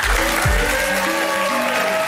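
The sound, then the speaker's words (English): Steady, loud audience applause at a tech summit welcoming Alex Katuzin, SVP and GM of Mobile Computer and XR, to the stage, a dense wash of many hands clapping, with sustained musical tones humming underneath and no one speaking. “I'd like a round of applause to welcome Alex Katuzin, SVP and GM of Mobile Computer and XR, my brother in arms of many years.”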